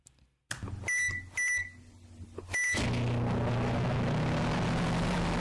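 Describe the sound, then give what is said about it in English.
A microwave oven hums loudly with a harsh, distorted drone, punctuated by three sharp electronic beeps before the steady roar swells and continues to the end. “Is that a microwave with like metal in it?”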